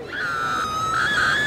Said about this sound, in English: The man vanished, and the people around him were covered in red. A gray cloud followed a moment later, as did the screams.